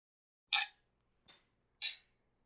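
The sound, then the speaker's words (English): Two bright clinks of Glencairn whisky glasses holding bourbon ring out in a toast, about a second apart, with a much softer tap between them and silence around them. “So, cheers, everybody.”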